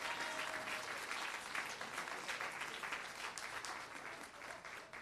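An audience gives a clap offering, clapping steadily in a dense wash of many hands at full strength and easing off only slightly toward the end.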